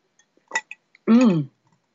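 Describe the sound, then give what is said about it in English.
A faint glassy tick and a short slurping sip from a glass of martini made with rice vodka, followed by a loud, drawn-out voiced "ahh" of satisfaction. No other talking. “All right, time for another little sip of this interesting martini that's made with rice vodka, which I'll be talking about towards the end of the show.”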